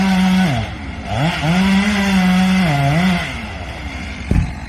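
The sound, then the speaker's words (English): A chainsaw cutting down a tree, its engine buzzing loudly and rising and falling in pitch as it revs through the wood, followed by a single dull thud near the end. “You were gonna tell us why that tree being cut down has anything to do with reselling”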